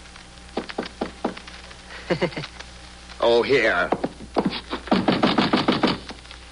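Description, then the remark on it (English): Several firm knocks on a concierge's wooden door at midnight, a short series followed by another quicker burst, then a brief spoken voice before a final round of rapid knocking. “And knock on the concierge's door.”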